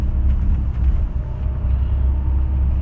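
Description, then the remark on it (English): A steady, heavy low rumble of engine and road noise fills the interior of a moving Megabus coach, constant and enveloping, with faint rattles and no voices. “Also, ladies and gentlemen, we do only have one restroom aboard this bus.”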